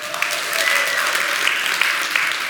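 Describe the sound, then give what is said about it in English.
A large church audience applauds and cheers for the children, with a bit of cheering mixed in, dense, steady clapping filling the whole stretch at a fairly loud, even level, with no one speaking over it. “Kids can't hear us, but give them a cheer too.”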